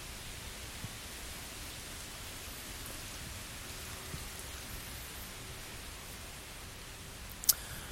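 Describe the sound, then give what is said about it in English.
Heavy rain pours down in the city of Sydney, Australia, by a greenhouse, in a steady, dense hiss that fills the whole clip, with a single sharp tap near the end and no voices. “It's fucking pissing rain.”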